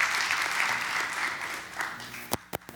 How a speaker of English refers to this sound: We're talking about Jesus, all in red, and let's just give him a hand clap of praise.